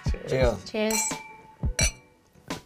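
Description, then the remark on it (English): Two wine glasses holding wine from '96 clink together in a toast, a bright ringing tap followed by another, with voices murmuring and laughing around them. “Well, we got some wine in front of us. Let's see if the wine from 96 is the rhymes.”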